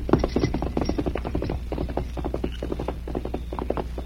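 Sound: horse hooves riding away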